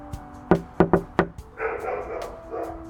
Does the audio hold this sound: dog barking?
yes